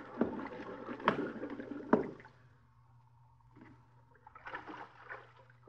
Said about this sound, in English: Listen. Them bubbles. Them air bubbles, can't you hear? Pipe down. Listen to them. It's Mac. It's the air coming out of Mac.